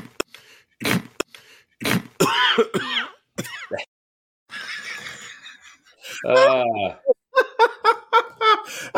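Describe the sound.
A cough sound effect used to cut a speaker off: a loud string of harsh coughs and throat-clearing bursts, irregular and choppy, with a strained, voiced stretch in the middle and a rapid run of short hacks at the end.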